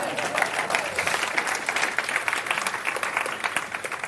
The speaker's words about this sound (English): Yeah, clap for that one.